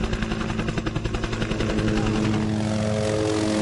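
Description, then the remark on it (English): A small helicopter carrying a vet searching for the next rhino to dart flies with its rotor thudding in a rapid, steady chop over a loud engine whine, continuous, the rhythmic beating easing slightly toward the end. “Vet Dave Cooper was already up in another smaller helicopter, looking for the next rhino.”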